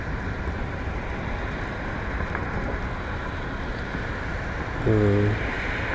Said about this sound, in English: It's raining, foggy.